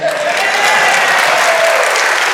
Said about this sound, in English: Yeah. One of the great hymns of our faith just butchered. I mean, you just, and y'all clapped for it.